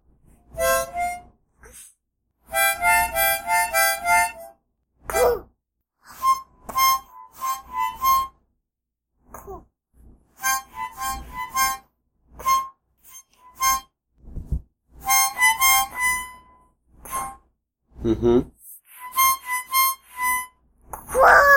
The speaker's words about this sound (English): I wrote the noisy one. The noisy one? All right. Can you play it? Yeah, and my harmonica is very noisy, so be quiet.